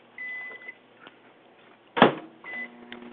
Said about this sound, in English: I hear you firing up that microwave